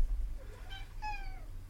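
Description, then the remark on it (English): A cat lets out two short meows, the second longer with a falling pitch, over a low background hum with no talking. “Even our cat is distressed about this, folks. Our cat doesn't vocalize very often.”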